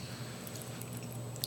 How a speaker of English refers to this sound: That's not a good crunch. I don't know what I'm crunching on. Bro. Nah. It's a lot. Nah. It tastes like a corn nut.